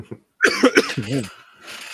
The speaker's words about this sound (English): Or fucking coughing like I am now.